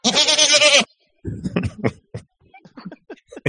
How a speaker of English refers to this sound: That goat on full blast is hilarious. I left it loud on purpose, but anyway.